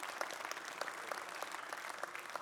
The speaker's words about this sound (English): Yeah, you can applaud that.